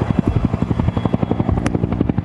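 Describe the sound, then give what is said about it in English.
A firefighting helicopter working on out-of-control wildfires in the Okanagan region passes overhead, its rotor blades beating in a fast, steady low-frequency thump over a broad engine roar, loud and alone without any voices. “14 helicopters, 80 firefighters, along with air tankers and skimmers, are trying to gain the upper hand on these 3 out-of-control fires.”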